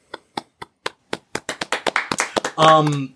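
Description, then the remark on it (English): Scattered single hand claps start slowly, then quicken and thicken into brisk applause from several people, which gives way to a loud, sustained voice at the end. “And then everybody starts clapping.”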